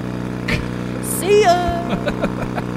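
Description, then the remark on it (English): A boat engine drones steadily throughout as the boat crosses a river, a constant low hum with a brief burst of voices rising over it midway. “This is a boat.”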